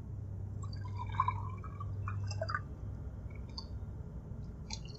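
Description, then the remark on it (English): Water trickles and gurgles into a glass for a couple of seconds, followed by a few light drips and clinks, quiet over a steady low hum. “Water? Thanks.”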